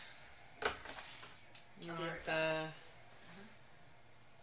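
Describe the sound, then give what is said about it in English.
A single sharp, noisy sneeze bursts out early on, followed by a stretch of voiced talking and some faint clinking in the background. “Ooh, bless you.”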